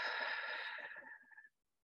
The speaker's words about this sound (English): Now let's take three long deep breaths together. So placing your hands on your chest, breathing all the way in. And slowly exhale.